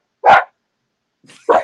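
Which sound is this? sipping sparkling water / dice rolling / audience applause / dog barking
dog barking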